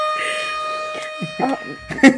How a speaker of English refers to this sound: Sorry, as the siren went off, our special guest went into tornado mode from, like, high school.